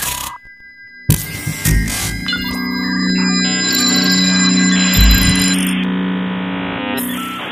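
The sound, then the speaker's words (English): An old-fashioned telephone rings with a loud, rapid metallic bell clatter that starts abruptly after a brief quiet moment and keeps trilling steadily for several seconds, with no voices. “The back when phone.”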